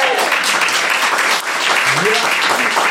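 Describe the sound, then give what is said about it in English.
Steady, dense sympathy clapping from a group during a quiz game fills all three seconds at a fairly loud, even level, with a few voices faintly audible underneath. “Not a goddamn sympathy clap”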